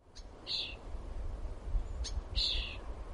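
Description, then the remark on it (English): Two short, high-pitched raspy calls from baby birds not yet ready to fly, waiting in their nest for food, sound a couple of seconds apart over a low rumbling background, each with a faint click before it. “Baby birds, not quite ready to fly, stuck in their nests, waiting for their food to be delivered.”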